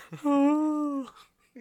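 A single drawn-out voiced yawn, a loud, steady, fairly low tone held for about a second before trailing off, followed by a short breathy sound.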